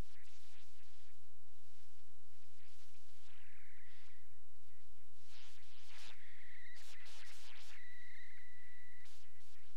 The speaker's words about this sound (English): Got a little bit of hiss. We good?